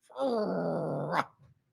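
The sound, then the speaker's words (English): A dog gives one steady growl lasting about a second, tonal and rumbling, then cuts off with a short breathy huff. Nobody talks during it. “He's about to bark.”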